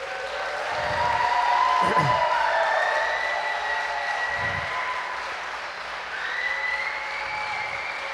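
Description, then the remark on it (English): A church crowd applauds steadily and loudly for the people baptized in Renew as they stand up. Scattered cheers and whoops rise above the clapping, sustained for several seconds without letting up. “All right, no polite golf claps here, folks.”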